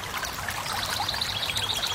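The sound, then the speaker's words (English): A river flows steadily down below a grassy campsite with trees, its continuous watery rush and soft trickling textures filling the scene without pause. No voices are present. “There's some beautiful trees around, and I can hear a river down there.”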